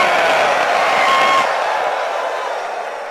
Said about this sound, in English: Somebody ready, jump on your feet and scream.